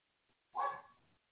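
A single short dog bark, fairly faint and slightly muffled, with a brief trailing tail before quiet returns; no one is talking.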